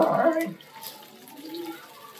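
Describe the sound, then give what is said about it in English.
Clam juice pours into a pan to build a sauce, with a soft, steady splashing that continues quietly for a couple of seconds, following a brief burst of voice at the start. “All right, help me build the sauce. All right. A little clam juice.”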